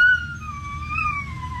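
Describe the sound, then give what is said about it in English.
A dog howl played on an electronic keyboard: one sustained, slightly wavering synth note that swells gently and then slides downward at the end, over a low background rumble. “Okay, do it again. Do the dog.”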